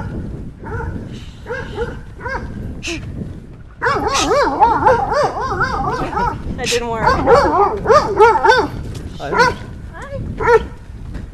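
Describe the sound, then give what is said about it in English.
A dog barks and yips excitedly in rapid, repeated loud bursts, with some whiny, wavering cries mixed in, while a person speaks briefly over it. “Sometimes if I say hi to a dog, it just stops.”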